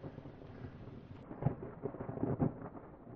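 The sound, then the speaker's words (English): A thunderstorm at Nolan Lake, with steady rain hissing throughout and low rumbles of thunder rolling in twice, fairly quiet, with no voices. “I'm gonna get out of this thunderstorm, but I hope you'll catch me next time when I go explore Beaver Lake.”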